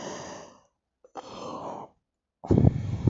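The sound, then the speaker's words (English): A long, drawn-out yawn from one person, fairly loud, with breathy inhales and exhales stretching over a few seconds and ending in a voiced, groaning release. “Sorry, yawn of the day.”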